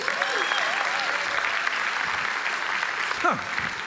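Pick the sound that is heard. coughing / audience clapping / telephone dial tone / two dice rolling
audience clapping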